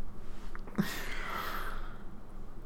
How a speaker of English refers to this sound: Well, you're yawning over there, so it's time to go to bed. Yeah, it's bedtime.